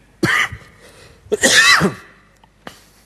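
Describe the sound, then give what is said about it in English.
Harsh bouts of whooping-cough coughing: a sharp cough, then a longer strained fit with a raspy, whooping draw of breath, and a brief final cough, with no talking. “Caught myself a cough. Apparently it's called whooping cough.”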